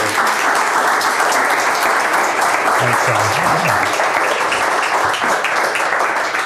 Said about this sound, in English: Thank you. Can we give another round of applause for Robert Roseberry?